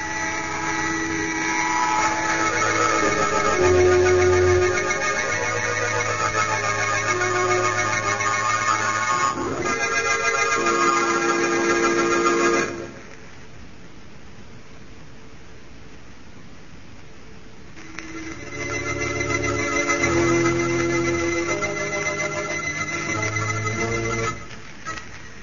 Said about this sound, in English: Cranston and Margot Lane, on the trail of a ring of alien smugglers they suspect of murder, are shot down in a small cabin plane. The pilot dead, the plane out of control, is zooming toward the ground.